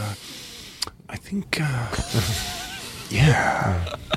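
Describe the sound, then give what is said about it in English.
A voice imitates Jeff Goldblum's sharp inward breaths through the nose, a few quick sniffing intakes with breathy vocal noises between them, fairly loud. “Inward nose breathing. He does a lot of that.”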